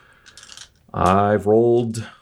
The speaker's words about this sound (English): I've rolled shit with more dice, so let's see what happens.